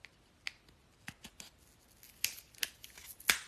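scissors cutting open packaging

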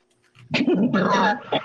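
dog whimpering

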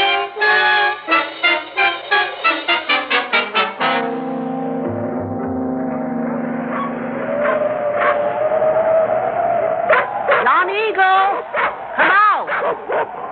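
dogs barking

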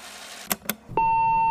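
answering machine beep

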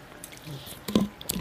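drinking water

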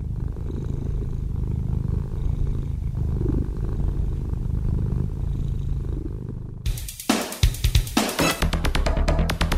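cat purring

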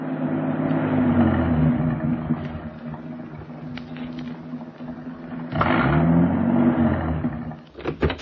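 car engine revving

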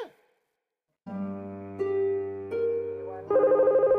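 telephone ringing

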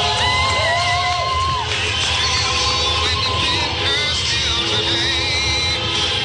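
car horns honking

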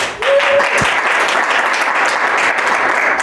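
audience applause

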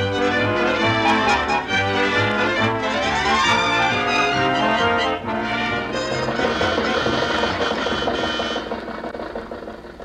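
old car engine running

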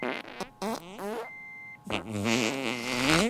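fart

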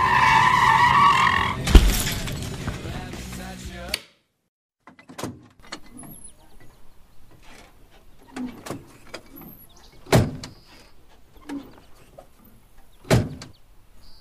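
truck skidding and crashing

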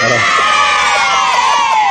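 children cheering sound effect

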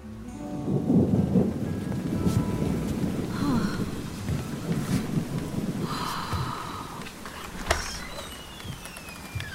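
heavy rainstorm with thunder

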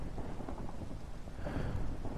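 thunder with rain

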